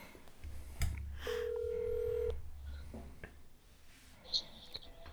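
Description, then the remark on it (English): A phone call being placed: a click, a steady low hum, then a single sustained electronic ringing tone lasting about a second, followed by faint clicks and a brief high beep. “We figured we'd give someone a call, and you were my fifth choice, so...”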